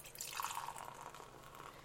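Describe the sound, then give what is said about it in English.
Beer, an 8% ABV brew, pours into a glass from a just-opened container: a steady, splashy trickle of liquid with a faint fizzing rise, lasting a couple of seconds with no voices. “Pop that top. Oh, my top! And the pour?”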